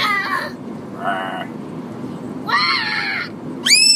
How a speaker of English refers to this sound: No screaming, please, okay?